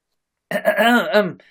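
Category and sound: human body sound, cough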